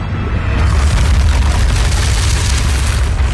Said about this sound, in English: they took cinder blocks and they scraped them across concrete and then they enhanced it